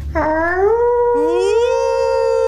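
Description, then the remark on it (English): A voice imitates a wolf howl in two loud calls, each sliding upward into a long, steady wail, the second carrying on to the end without any words. “can you teach me how to howl properly?”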